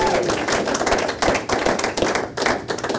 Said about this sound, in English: You got two of our two smaller questions right. Big round of applause.